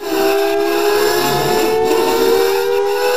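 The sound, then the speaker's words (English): A person's vocal imitation of a creature's wail: a loud, sustained wail like an air raid siren, its steady pitch creeping slowly upward over about three seconds, with a harsh, grating metallic hiss layered throughout. “It let out a wail that sounded like a combination of an air raid siren and grating metal.”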